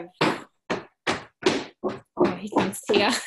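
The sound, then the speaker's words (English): A series of about eight heavy, thudding foot stomps, moderately loud, spaced at a steady beat that quickens and blurs together toward the end, with no voices. “Stomp.”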